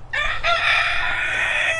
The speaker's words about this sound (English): The rooster in the background.